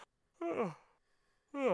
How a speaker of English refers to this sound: Tried to hold back on the yawn, but it got me.